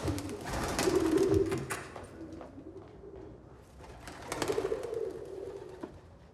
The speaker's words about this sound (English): Perhaps in hindsight, you shouldn't have gone with the doves.